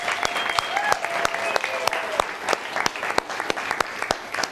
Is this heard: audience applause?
yes